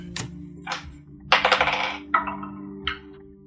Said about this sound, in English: Roll the dice.